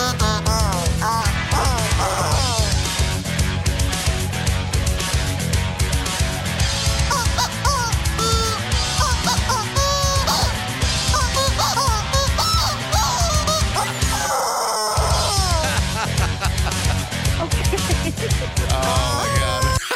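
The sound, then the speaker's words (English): A song cover squeezed out of a real squeaking rubber chicken toy, its honking, squawking notes riding over a full, steady backing track with a brief dropout near the end. “They were actually using a legit rubber chicken.”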